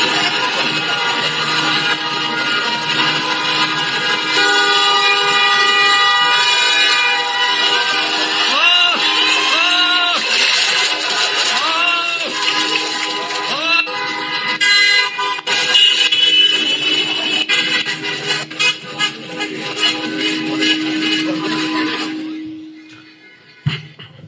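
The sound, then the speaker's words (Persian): Many car horns blare together in a long, continuous, overlapping chorus of steady and intermittent honks, with crowd noise mixed in, before fading out near the end, as drivers honk in protest during the White Paper protests in China. “یا میگفتن اگر میترسی نمیشه بوخ که میتونی بزنی با ماشین.”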